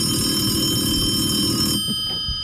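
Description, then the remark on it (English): A telephone rings with a bright, steady electronic trill and sustained high tones. It stops abruptly partway through, leaving only a faint hum and a few low bumps. “I've got to get the phone's ringing, guys.”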